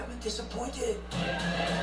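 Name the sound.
horse neighing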